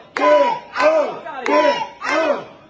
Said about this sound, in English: There's the crowd chanting, get out.